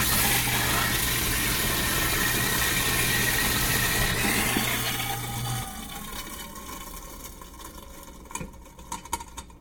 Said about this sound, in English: And there's some garbage here, so I get to run the garbage disposal. It's a pretty new, quiet garbage disposal, so it may not make that much noise. Here it comes.